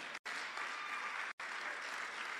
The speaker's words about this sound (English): So as you are clapping, you are activating the blessing in your life.